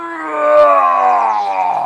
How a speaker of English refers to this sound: When Lion heard this, he gave a terrible, mighty roar. The trees in the jungle shook, and the other animals ran to hide.